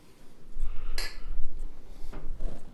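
Beer pint glasses, one a Beetlejuice pint glass, clink together in a toast: one bright, ringing clink followed a second later by a duller knock, over a low steady rumble with no one speaking.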